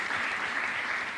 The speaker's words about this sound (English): Thank you so much. A hand clap.